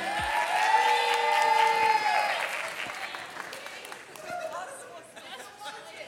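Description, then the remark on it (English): A church audience applauds steadily for several seconds during a morning service, a dense wash of clapping with scattered cheers and chatter, briefly topped by a held tonal note before the applause gradually thins out. “Let's hear for them.”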